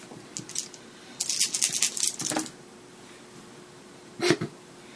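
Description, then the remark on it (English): Six dice are rolled, needing sixes, clattering and tumbling across a hard surface in a quick burst of rattling clicks, followed a couple of seconds later by one more short knock, fairly quiet. “So 6 dice. And you would need sixes.”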